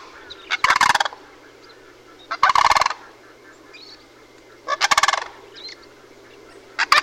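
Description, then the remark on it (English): Loud, rattling bird calls burst out in repeated bouts, four rough trumpeting volleys spaced a couple of seconds apart: the alarm calls of a male and female sandhill crane leaping into the air as a bear comes through the grass, with a steady low hum underneath. “Back and forth, and vocalizing their alarm calls.”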